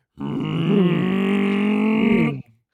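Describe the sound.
A voice imitates the buzzy, raspy drone of a loud muffler-deleted car exhaust, such as on a 98 Honda Civic, holding one steady, nasal, harmonic-rich tone for about two seconds before cutting off abruptly.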